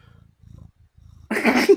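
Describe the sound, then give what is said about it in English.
Gizmo, a cat perched on top of a chair, sniffs right into the microphone: soft, low rhythmic rumbling pulses give way to a sudden loud, breathy, hissing snuffle that fills the last half second. “Sniffing the mic, love it.”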